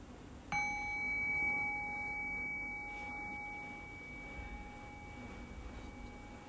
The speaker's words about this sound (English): And while we rest here in this present moment experience, I'll ring the sound of the bell. Rest your thinking mind on the sound of the bell. Allow the fade of the bell to guide your awareness into silence.